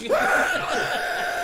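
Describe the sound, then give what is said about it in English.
A single voice lets out a sustained, high-pitched wailing scream, imitating people screaming through the vents beneath a Shein factory. It rises sharply at the start and then holds steady and loud for over a second. “Screaming through the vents, and they're like playing music.”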